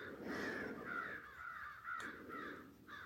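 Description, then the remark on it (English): Several crows caw repeatedly in harsh, overlapping calls, fairly loud, with a steady noisy outdoor background and no talking. “Not judging, so not even judging the busy mind that maybe the crows are radiating back to me.”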